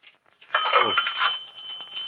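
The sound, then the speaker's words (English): A telephone rings during a call made from a phone booth in a drugstore, with a bright, steady electronic trill that starts abruptly and continues for a couple of seconds, fairly loud, with a brief warbling sweep near the start. “So we find a phone booth. Yeah, this one. Yeah. And we make a phone call.”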